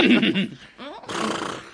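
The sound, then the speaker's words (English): A scared horse jumping backwards whinnies loudly in a quick, quavering burst, then gives a shorter rising call, followed by a rush of breathy, noisy snorting. “So it scared the horse and he jumped backwards. Good horse.”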